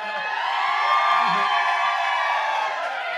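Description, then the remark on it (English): A live audience in Providence, Rhode Island cheers and whoops in a loud, sustained roar of mixed voices, with shrill whistles and high whoops riding over the crowd noise for about three seconds. “Anytime I'm feeling nervous on stage, I'll go, Providence, Rhode Island, make some noise.”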